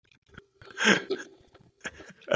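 sipping tea

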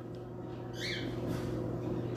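domestic cat vocalizing

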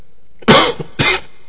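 cough

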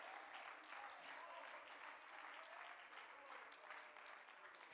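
audience clapping hands

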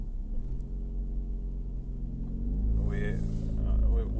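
car engine rumble

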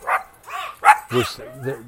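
dogs barking

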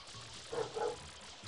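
dogs barking

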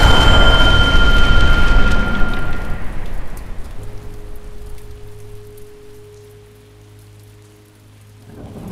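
heavy rain pelting down

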